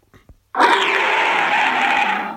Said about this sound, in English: I was looking for a dog noise and I found one. Oh, there it is. First time I labelled bark. Oh, Lassie's here.